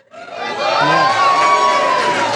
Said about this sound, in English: Another cheer for us. Anyone listening, that wasn't for us. That may have been for a premiership player. Who wandered past. Going past in the background.